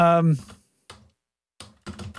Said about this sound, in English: I was typing the obvious thing for a show title.